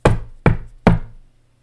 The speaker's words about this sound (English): so why the fuck was she knocking on my damn door?